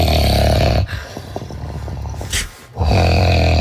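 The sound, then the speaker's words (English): A man snores loudly in his sleep, with a harsh, rumbling inhale, a brief rattling pause, then another deep guttural snore starting up. No one speaks. “my hubby snores so loud he has to sleep on the couch every night”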